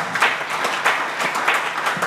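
A crowd claps steadily, a dense burst of many hands applauding together, filling the moment with no voices standing out.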